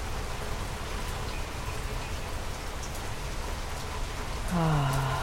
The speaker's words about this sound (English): Breathing now, going into the silence to allow yourself to be nourished by the beauty of the rain.